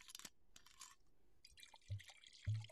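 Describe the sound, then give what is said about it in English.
Chardonnay white wine splashing and trickling into a glass, with bright sloshing bursts and a couple of low clinks or thumps near the end; no one speaks. “Anyways, for SMR sakes, let's pour it up.”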